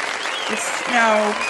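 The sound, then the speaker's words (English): A steady wash of clapping from an applause sound effect fills the background, dense and crackly like a crowd applauding, with a voice speaking over it toward the end. “And if my sound effects were working properly, we would have lots of raucous applause happening.”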